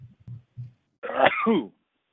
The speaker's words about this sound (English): Excuse me. You okay? Sorry. Sneezing.